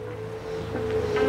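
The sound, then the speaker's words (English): A steady wash of Pacific Ocean surf rolls continuously, swelling slightly louder toward the end, with a low sustained hum beneath it and no voices, from the final scene of the film Dead Man (1995). “Nobody has guided William Blake to the very, very far edge of the frontier, the Pacific Ocean.”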